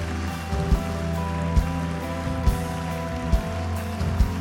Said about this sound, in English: Come on, church, clap just a little bit longer. Clap just a little bit longer. Come on, keep coming, keep coming, keep coming, keep coming. Here they're still coming. Keep clapping just a little bit longer.